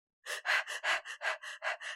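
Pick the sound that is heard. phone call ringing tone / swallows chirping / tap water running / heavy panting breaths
heavy panting breaths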